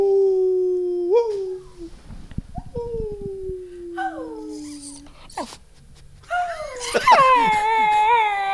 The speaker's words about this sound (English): He knows how to howl on command.